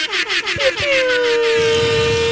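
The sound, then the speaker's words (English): A loud, sustained mobile air horn blast with a strong steady tone, preceded by a rapid series of short pulsing honks that merge into one long continuous blare. “Mobile air horn.”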